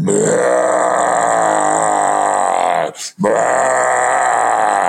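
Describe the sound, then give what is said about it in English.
A voice imitates two deep, breathy, rasping roars, 'Darth Vader roars', heard right over the top of a little dome tent: one long and loud, then a brief pause before a second drawn-out growl. The roars are heavy, rough and sustained, with no other sounds. “The next thing I know is, and I was in one of those little dome tents, right literally over the top of the tent, there were two big, what I call Darth Vader roars.”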